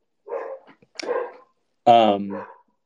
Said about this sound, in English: wow, there's my dog again. Going back to my Christian viewpoint, I'm going to try and block him out as best I can.